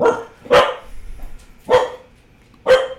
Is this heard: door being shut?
no